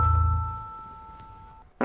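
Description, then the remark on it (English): A short, low, buzzy fart sound effect played from a soundboard blurts out at the start and quickly fades, over a steady thin electronic whine, before a sudden burst of noise cuts in at the end. “I heard the fart.”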